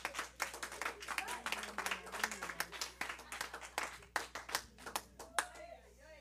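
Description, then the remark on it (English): A crowd claps unto Jesus in a loose, sustained burst of many overlapping hand claps, moderately loud, with voices murmuring and calling out underneath for the whole stretch. “Clap unto Jesus.”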